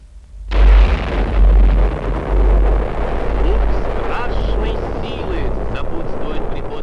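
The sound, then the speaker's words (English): A huge nuclear bomb explosion, from a large bomb dropped by parachute from a plane, erupts suddenly after a brief silence, then sustains as a loud, deep roaring rumble with crackling debris, overwhelming for several seconds. “The bomb drifts downwards, allowing the plane time to get away.”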